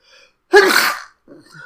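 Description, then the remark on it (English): A single loud sneeze bursts out sharply and fades within about half a second, with faint breathy sounds just before and after it. “Just, for four straight sneezes like this.”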